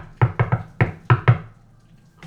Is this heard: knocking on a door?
yes